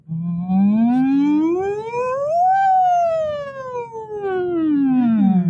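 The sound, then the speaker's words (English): A single voice imitates an ambulance siren as a vocal warm-up exercise, gliding smoothly upward in pitch to a high peak, then sliding steadily back down, sustained and fairly loud, with no other sounds. “So you can do like sirens, like you would an ambulance siren, which would be...”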